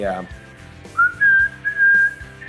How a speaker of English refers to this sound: cool hearing that whistling, there's a whistle solo. I guess there's like a low baritone sax.